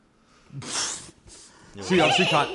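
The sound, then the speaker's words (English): A person imitates a horse whinnying, voicing two loud, breathy neighing bursts with a brief pause between them, the second longer and more tremulous. “I would be like whinnying right.”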